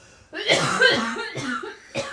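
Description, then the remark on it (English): A woman coughs in a short fit of harsh, raspy coughs, the first drawn out and the last two coming in quick succession, with no talking. “She's not coughed a single time until we started recording this podcast.”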